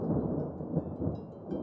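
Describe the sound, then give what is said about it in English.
A deep, rolling rumble of thunder as Zeus disappears fills the moment, steady and heavy with slight swells in loudness, heard on its own without any voices. “Epimetheus nodded dumbly, and with another bout of thunder, Zeus disappeared, leaving Pandora and Epimetheus alone.”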